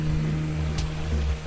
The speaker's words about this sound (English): And when the motor is revving, villagers can hear from a mile away, and it's sort of there's this excitement because, you know, visitors too often, and they scream motor, motor, and they all start running to the riverbank to see who's coming.